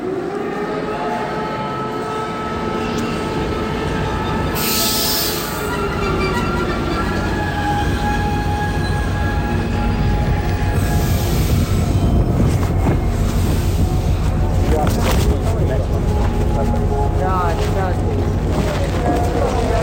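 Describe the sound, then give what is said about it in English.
Steady rumble and rattle of a passenger train rolling along the rails in Ukraine, heading south toward Odessa during wartime, a continuous, fairly loud drone with faint indistinct voices mixed in. “I guess the first thing is I'm slightly surprised that in the midst of a war you can still take a train towards the fighting and not just away.”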